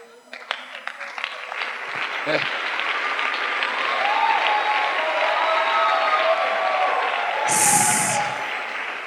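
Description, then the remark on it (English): An audience in church claps their hands in a dense, sustained burst of applause that swells and holds steady for several seconds, with scattered voices and cheers mixed into the crowd noise. “So how come when you are in church, you don't want your hands to clap?”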